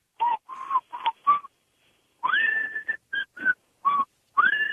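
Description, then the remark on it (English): Someone whistles the jaunty Andy Griffith theme melody in short, breathy phrases separated by brief pauses, the notes wavering and sliding upward at times, with no talking. “you wanted to try to whistle the Andy Griffith song, sadly?”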